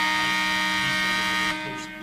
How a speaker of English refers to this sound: we can't hear them because the shot clock went off.